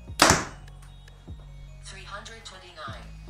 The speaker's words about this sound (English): All right, guys, today we're going to be doing the speed test on the Evoke 31. This one, we've got it set at 29 inches of draw length and maxed out, it was at 72 pounds. We're going to start out by shooting our 350 grain arrow.